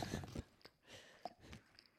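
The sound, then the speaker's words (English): Close, wet chewing sounds of a man eating smoked almond cheddar cheese spread, with soft smacking and a few crisp bites, repeating in an uneven rhythm right up against the microphone, no talking. “He's chewing right now, you guys.”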